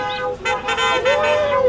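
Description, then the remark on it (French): Car horns honk in a sustained, overlapping blare, several tones layered together, with a steady crowd murmur underneath. “Moi j'aime ça klaxonne.”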